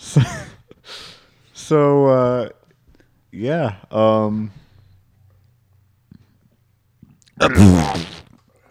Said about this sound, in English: Know that I was going to burp? Yeah? Not cool, dude.